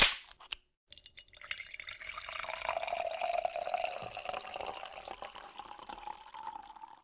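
A sharp metallic crack of a beer can being opened, then a short pause and a steady fizzing, pouring hiss that runs for several seconds, close and fairly loud, with no talking.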